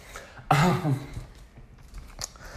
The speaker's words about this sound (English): But and it would not be an episode without me coughing. Although we almost made it to the end today, so yay.